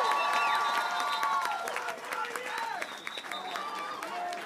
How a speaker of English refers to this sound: Let's give all of them a round of applause.